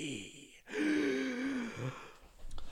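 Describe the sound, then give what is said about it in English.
A voice imitates heavy breathing: a sharp gasping inhale followed by a long, breathy, drawn-out exhale with a faint tonal edge, fairly loud, ending in a few quick puffs. “would not speak a word during these calls and said simply breathing heavily.”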